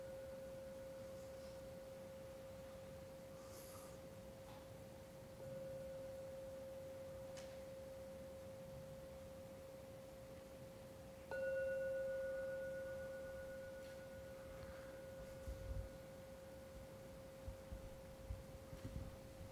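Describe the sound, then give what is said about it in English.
A meditation gong rings out in three strikes a few seconds apart, signalling the end of a meditation. Each strike blends into one steady, pure, sustained tone. The third stroke is the loudest and fades slowly, with no voices. “Now, when I ring the gong 3 times, please use that as a signal, especially the 3rd sound from the gong, to come out from the meditation gently.”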